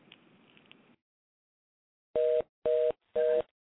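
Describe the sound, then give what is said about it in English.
A faint stretch of low background murmur, then silence, followed by three loud, evenly spaced beeps of a phone line tone after a call drops, each lasting about a quarter second. “I don't know what's going on with Pete Towns' phone.”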